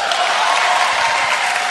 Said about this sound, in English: You're right, brother. Clap for him. He's right.